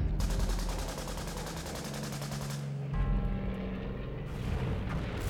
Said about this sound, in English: Wait, mannequins, with their pale, featureless faces zigzagging, trying to outrun the thunderous bullets being spat from machine guns on low-flying Japanese bombers.